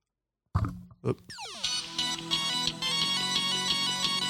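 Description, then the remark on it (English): Bright, punchy electronic music from a game loading on a phone plays through its small speaker held to the mic, opening with a couple of thumps and a rising sweep before settling into a busy, steady melodic loop. “I'm just going to load up the game and I'm going to put my phone to the microphone so you can hear it, because like every time I load up this game, I forget how good this music is.”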